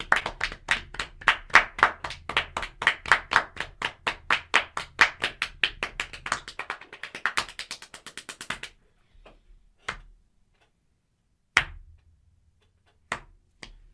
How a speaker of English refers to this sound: If you clap one more time, you're not invited to my birthday.